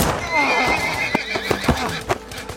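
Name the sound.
horse neighing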